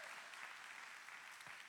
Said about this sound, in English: You should probably clap real loud, like everything. Come on now. Come on, keep clapping.